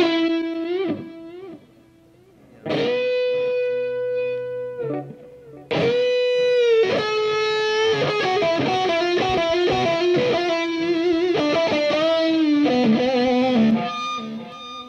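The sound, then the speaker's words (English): A distorted electric guitar, with a subtle delay effect from a Line 6 unit, plays sustained notes and then busier melodic runs, with a faint echo trailing behind the phrases; it's loud, with no talking. “And it goes nicely with the distortion.”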